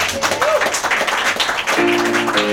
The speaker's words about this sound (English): big round of applause for you guys for getting up and dancing.